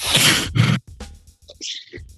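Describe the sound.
A voice imitates their own heavy, loud breathing as heard in a recording, right up against a microphone, two big breathy bursts followed by quieter, hissy exhales and a short wheezy sound.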